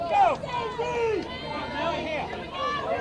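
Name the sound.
crowd chatter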